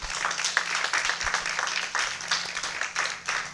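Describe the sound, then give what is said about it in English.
A crowd clapping hands in praise, a dense, steady wash of many overlapping claps at moderate loudness, sustained throughout with no voices standing out. “Come on, give a hand clap of praise.”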